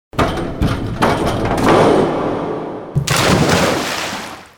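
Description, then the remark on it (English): A diver bounces on a pool diving board before diving: a series of loud, springy thuds and rattling knocks at an uneven pace, each trailing off into a noisy, resonant wash, with no voices. “The sound you heard was a diver bouncing on a diving board before splashing into a pool.”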